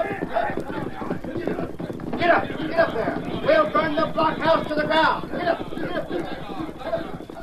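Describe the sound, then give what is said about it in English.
Several outlaws' horses gallop off together to attack a fort, a dense, rapid drumming of hoofbeats that stays loud throughout, with voices shouting over the commotion. “Slater! Bowman! Get on your horses. The way's clear. We can attack the fort.”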